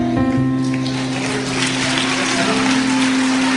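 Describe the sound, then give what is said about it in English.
An audience at a church service claps for Jesus in a dense, continuous patter that sounds almost like rain, with a sustained low tone humming beneath it throughout. “Don't stop clapping your hands for Jesus.”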